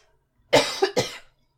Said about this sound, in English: You okay? Yeah. Yeah. We need to just have a cough fest.